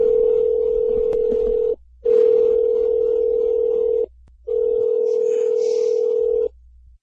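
A steady, low-pitched telephone tone hums in three long stretches, each a couple of seconds, broken by brief silent gaps. No one speaks over it.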